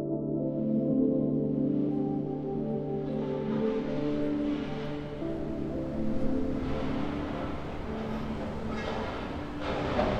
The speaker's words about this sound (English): The sounds of traffic and industrial noise are coming from every direction.